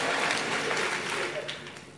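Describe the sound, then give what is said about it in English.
A crowd claps hands together at the speaker's call, a dense, noisy spatter of many claps at steady loudness that eases slightly toward the end, with a murmur of voices mixed in. “Clap your hands and say, devil, you are a liar.”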